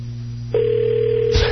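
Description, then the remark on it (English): A steady electronic telephone ring tone sounds on an outgoing call placed during a radio show to the WJFK operations director, a single sustained tone starting partway in over a low hum, then cut off by a brief click near the end. “Phone is ringing.”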